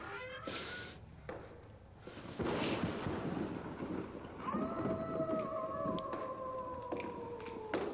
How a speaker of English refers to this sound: Who did the wolf? It's just sound effects at the beginning.